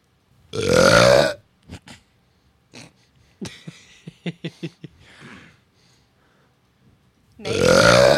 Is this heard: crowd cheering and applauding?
no